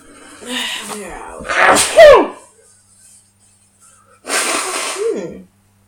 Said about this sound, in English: look, you have a go, because I've got to blow my nose. You blew the nose.